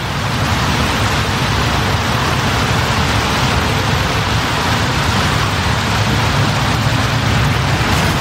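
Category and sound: nature, rain falling outdoors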